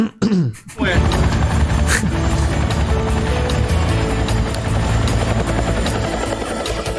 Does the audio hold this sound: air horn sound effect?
no